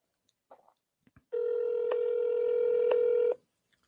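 A few soft clicks, then a loud, steady telephone tone holds for about two seconds before cutting off, as a call is placed on live radio and connects. No one speaks.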